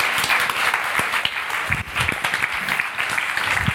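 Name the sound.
audience applause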